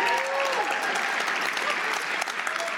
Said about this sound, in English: And those of you who didn't applaud, unless you're a vegetarian, you fucking go there.